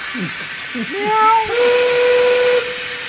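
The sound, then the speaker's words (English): A steam train whistle slides upward, then holds one steady, piercing tone for about a second over a constant hiss. Brief voice sounds come just before it. “Welcome to the train. The train for all humans. All aboard.”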